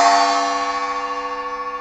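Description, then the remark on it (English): A single gong strike rings out loudly, its shimmering metallic tone sustaining and slowly fading with a gentle wavering pulse, heard on its own with no voices. “bang the gong.”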